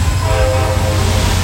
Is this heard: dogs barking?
no